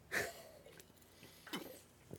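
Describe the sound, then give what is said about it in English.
A single sharp, explosive sneeze bursts out at the start, followed by a couple of softer breathy sniffs; no one speaks. “Sorry, I just sneezed.”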